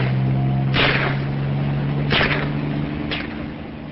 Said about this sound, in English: The helicopter takes off again, bullets flying all around it. Two men continue to shoot as their would-be prey is carried further away into the skies over the ocean.